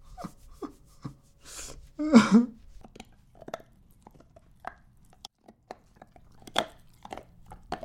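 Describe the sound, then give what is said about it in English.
A light cream golden retriever gnaws on a hard nylon bone, producing irregular clicks, scrapes and crunches, with a couple of louder bursts of chewing and some heavy breathing between them. “He's chewing on a nylon bone.”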